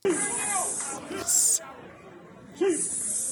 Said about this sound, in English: So this is the hissing.